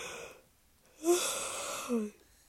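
A single drawn-out yawn from a tired person, fairly loud, opening with a breathy intake and ending in a short voiced groan, with near silence before and after.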